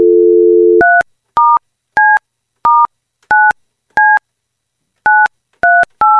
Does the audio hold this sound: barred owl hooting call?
no